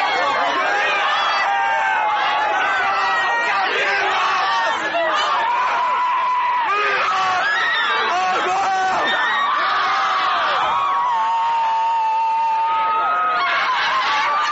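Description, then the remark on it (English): A big crowd chants the rhythmic Owensboro High School cheer "We are Owensboro" in unison, loud and sustained, with many voices blending into a continuous roar of shouting and whooping. “I hated that cheer as an Apollo fan. We are Owensboro because it always rings out at the wrong time when you're an Apollo fan.”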